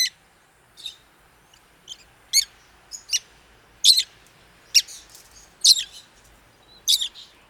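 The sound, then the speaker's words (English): Rosy-faced lovebirds, small bright green parrots living in Arizona, give a series of sharp, high-pitched squawking calls, about a dozen bursts spaced irregularly, clear over a quiet background with no talking. “They have a distinctive but familiar call to valley residents.”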